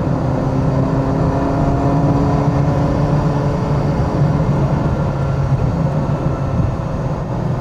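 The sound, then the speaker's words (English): A Ferrari Mondial T sports car engine drones steadily while driving, a loud continuous low rumble with a faint harmonic whine over road noise, with no talking. “This car just comes alive when it's moving.”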